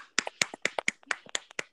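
hand clapping

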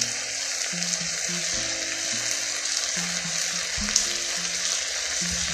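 food sizzling

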